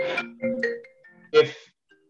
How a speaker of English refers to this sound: If it was deemed that, I'm sorry, I'll wait until this phone is not ringing.